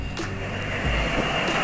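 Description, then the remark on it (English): A steady, broad roar of an airplane engine fills the short recording, with a deep low rumble and constant hiss that holds even throughout, no voices present. “Airplane. You got it.”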